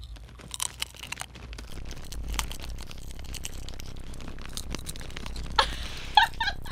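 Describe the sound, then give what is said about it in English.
Crisp, irregular crunching of potato chips being chewed for ASMR, with scattered sharp crackles building to a few louder crunches near the end. No one speaks. “The chips are beautiful.”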